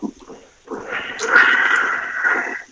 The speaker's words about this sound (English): Is that me doing it? Still got bad feedback.